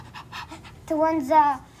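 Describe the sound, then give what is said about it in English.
A child's voice imitates a dog warning its owners of a fire alarm, with a few quick breathy panting puffs followed by two longer, whiny voiced barks, fairly loud. “And dogs can help people. Like if there's a fire alarm, they go like this.”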